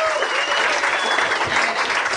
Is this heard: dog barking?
no